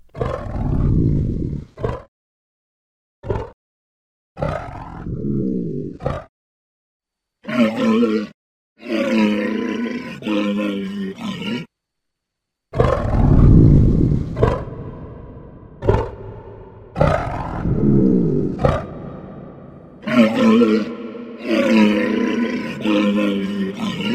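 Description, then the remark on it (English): A cave troll roar sound effect made from edited vocal takes combined into one: a string of loud, deep, guttural roars and grunts, starting as short bursts separated by silences, then building into longer, rumbling bellows with no talking. “The Cave Troll”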